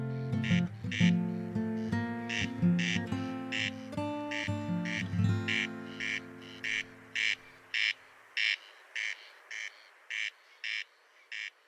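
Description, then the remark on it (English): A corncrake's dry, rasping crex-crex call repeats steadily in a regular rhythm. Soft tonal music plays underneath for the first part, then fades so the rasping continues alone. “They used to keep them awake at night with this croaking noise that they make. The Latin name is Crex Crex, they're named after this.”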